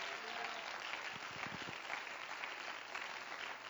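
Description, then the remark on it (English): A church audience claps steadily for a few seconds, a dense wash of overlapping hand claps at even volume with some scattered voices murmuring underneath. “Somebody clap your hands if you're thankful for the church.”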